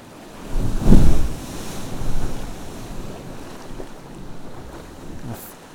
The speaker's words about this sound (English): The swell comes in, lifts me up, sweeps in, curves around into the cave, and thumps into the back.